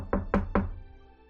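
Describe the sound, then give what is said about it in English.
Three soft knocks on a door in quick, even succession, muted, with a short fading resonance afterward and no voices. “you hear a slight knock on the door.”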